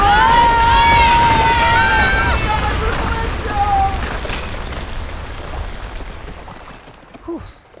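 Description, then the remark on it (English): A loud, dense rush of many CDs tumbling and clattering down at once in an avalanche set off by a stomp, strongest at the start and gradually thinning out over several seconds, with a high cry or squeal early on. “The stomp caused an avalanche!”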